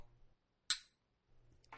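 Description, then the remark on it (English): Glasses clink together once in a toast, a single bright, high ring with a short shimmering decay over faint low background noise. “We're going to cheers.”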